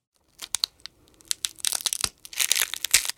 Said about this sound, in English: next thing I'm going to do is a cracking of an egg or pecking. Think about that scene in Jurassic Park when the dinosaur eggs hatch.